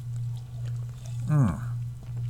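H-E-B sparkling water pours in one short, gurgling glug lasting under half a second, over a steady low electrical hum with no other sound around it.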